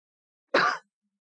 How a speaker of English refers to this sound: And still there was no response, so he opened the door and entered. After a moment, he gave what he thought was a discreet cough.